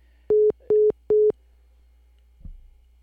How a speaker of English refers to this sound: Johnny hit a bad spot, disappeared, and left us. So let's try to get Johnny back on the phone.